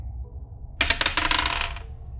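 Dice rolled for a technology check in a tabletop role-playing game clatter and rattle across a hard surface for about a second, a dense burst of bright clicking that tapers off, over a low steady background hum.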